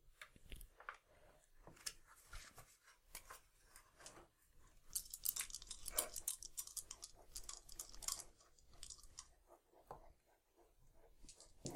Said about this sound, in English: Today will be our ASMR episode. The entire podcast will just be us signing Morse code with our pencils into a nice piece of paper.